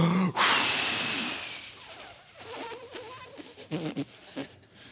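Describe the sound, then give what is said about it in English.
A voice mimics the wolf from the Three Little Pigs huffing and blowing at the pigs' brick house: one long, loud, breathy blast of air, followed by a few shorter, softer puffs and breaths that trail off. “He huffs and puffs and he blows.”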